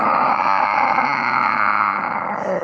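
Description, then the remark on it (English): A person imitates a Godzilla roar to end a show bumper: one loud, raspy, sustained bellow that holds steady for nearly three seconds before easing slightly at the end, with no talking. “Dude, that's a pretty good Godzilla roar.”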